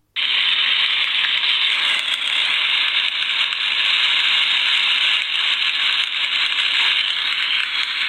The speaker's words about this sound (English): We've got a birthday cake, and it's got one of those sparkling candles in it, so I'll light that now.